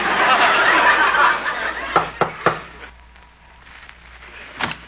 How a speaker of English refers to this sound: I'll knock on the door.